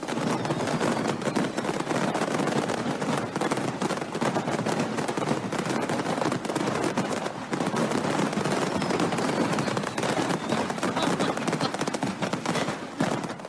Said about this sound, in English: So over in Russia, a fireworks store caught on fire. And what do you think happens? Everyone's safe. But this is what it sounds like when a fireworks store catches on fire.